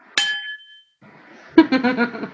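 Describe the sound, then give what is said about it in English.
Two cocktail glasses, holding a drink of black-cherry flavored sparkling water with beet juice, clink together once in a toast, a sharp, bright ting that rings briefly with a high shimmering tone before fading. A moment later, a person starts talking. “I'm gonna do a clink, okay?”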